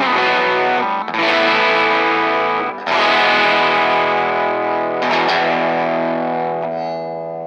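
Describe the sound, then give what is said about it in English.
A distorted 1983 Gibson Futura electric guitar strums four loud chords in turn, each ringing out with long, even sustain before the next hits. No one speaks. “The tone on that is just very even. Sounds great. That thing rings.”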